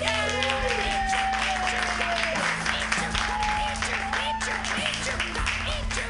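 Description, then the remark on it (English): A comedy show audience in San Francisco applauds steadily as the next comedian is introduced, a dense rain of clapping that carries on for several seconds at an even, fairly loud level, with faint music or tonal hum underneath. “You guys, clap your hands together.”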